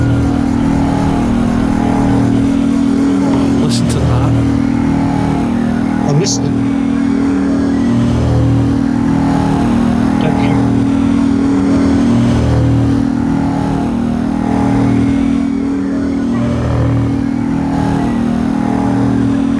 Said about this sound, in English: Oh, I can hardly hear it. It's more a kind of pulsing metal sound. Like an engine kind of clunking, more than a kind of knocking. Let's go up this end because I could hear it really up at the shield end. It's quite loud.